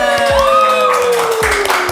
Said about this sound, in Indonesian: Jadi terima kasih buat teman-teman yang udah levelers ya, yang udah dengerin podcast episode kemarin. Yang pertama itu tembus 100 pendengar. Wow. Versi kita. Tepuk tangan.